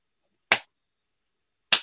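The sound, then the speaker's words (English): Two lone hand claps from an audience, sharp and fairly loud, spaced over a second apart with silence between them, in a packed 1,200-seat auditorium at a touring stage show. Each clap cracks crisply and fades quickly, and no voices are heard. “And you could literally count the claps.”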